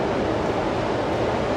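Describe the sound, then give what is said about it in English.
Steady, broad roar of ocean surf washing in, a continuous wash of water noise with no distinct individual crashes, moderately loud, with no voices. “So as long as we have the ocean behind us, rolling in, might just kind of work with your breath.”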